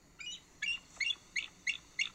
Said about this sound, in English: I got it on my phone. Oh, okay. Bald Eagle calling. Here we go. Here it comes.